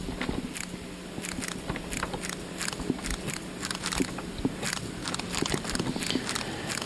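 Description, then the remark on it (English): Slowed-down butterfly wing beats make a crunchy, irregular run of crackling pulses, moderately loud, much like someone chewing on an apple. There is no talking. “A slow butterfly wing sounding like it is eating an apple.”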